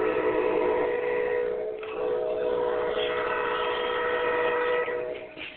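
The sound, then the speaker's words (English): An Amtrak Heartland Flyer passenger train with three cars, led by cab unit 90221 and powered by Amtrak 816, heading into Fort Worth, sounds its horn in long sustained blasts with a brief break, loud, over the steady rumble of the train rolling past. “lots of whistles.”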